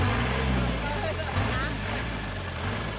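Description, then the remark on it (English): The engine of a red and blue long-tail river boat, crossing a river into Myanmar, drones loudly and steadily, a continuous low rumble with hissing wash throughout, and a voice faintly audible beneath it. “We've just hopped into one of the long boats that Thais use on their busy rivers.”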